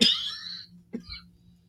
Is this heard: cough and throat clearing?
yes